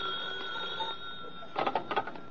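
A telephone rings with a steady, high metallic bell tone, then a few louder clattering bursts near the end. There is no talking.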